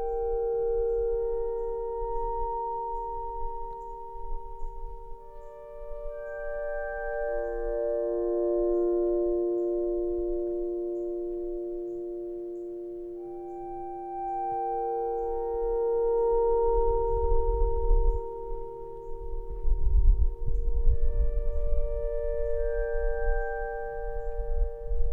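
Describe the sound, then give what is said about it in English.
Soft synthesized tones from 20 speaker boxes with small solar panels, starting as sunrise light hits them, swell and fade in overlapping layers, sustained and sing-like, drifting in and out over a low rumbling noise that grows stronger toward the end. “And just as the sun crests there over the horizon and the light hits the boxes, then these lovely synthesized tones start to fading in and out of the boxes are sort of like singing.”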